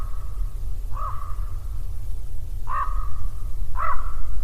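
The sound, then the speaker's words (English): A raven caws three times at uneven intervals, harsh and fairly clear, over a constant low rumble and a faint steady tone in the background. “Let's go see that pesky one-eyed raven.”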